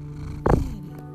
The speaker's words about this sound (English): He's a purring machine. He's orange, he's not green. He's a purring machine. Oh, kitty.